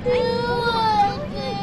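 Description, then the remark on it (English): A baby on a plane wails in one sustained, high-pitched cry with a wavering, harmonic tone that rises slightly and then trails off, loud and continuous over a low background rumble. “You know, why is there always a crying baby on a plane?”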